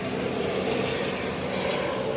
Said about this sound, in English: That is another helicopter. I'm at the same location. Flying directly over me. That is a black and white helicopter.